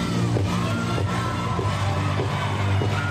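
A dense, steady roar of crowd cheering with scattered whoops and yells, loud throughout, over a low thumping musical bassline, as 21-year-old UCLA gymnast Mia Dennis performs her routine.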